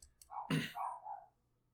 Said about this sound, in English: Do you hear Bindi? I do. She's having a good time. I think she's barking at the TV.